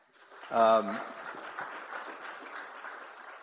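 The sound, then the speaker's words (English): Crowd applause fills the space with a dense, steady patter of clapping, opened by a brief loud shout or cheer before the clapping continues at an even level. “Round of applause.”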